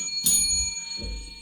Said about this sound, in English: I'm going to ring the bell over.